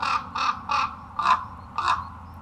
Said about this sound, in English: Raven calls are tonally similar, but lower pitched. They croak rather than caw. Here are some ravens calling.